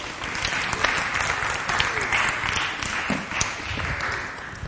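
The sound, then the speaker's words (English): A crowd claps steadily for several seconds, a dense, even wash of many hands with a few sharper individual claps standing out, holding at a consistent loudness throughout. “Give these guys a clap.”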